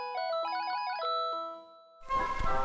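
A bright, electronic mobile phone ringtone plays a quick melody from Vivaldi's Four Seasons in stepping beeps for about two seconds, then cuts to a fuller, richer burst of orchestral-sounding music.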